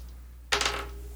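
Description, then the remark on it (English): Dice are rolled onto a hard tabletop to see if an attack hits, a sudden clatter of several quick rattling impacts that tumble and settle within half a second, with no voices. “That's going to be a 18. That's a hit. And let me actually grab the right dice.”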